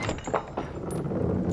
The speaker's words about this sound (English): She's still awake when you knock on her door.